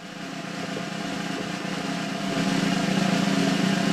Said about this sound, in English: What movie will she assign us next? Here is the drum roll.